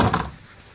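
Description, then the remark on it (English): A door thuds shut: one short, solid knock of wood that fades quickly, with no voices. “Richie, did you hear the door?”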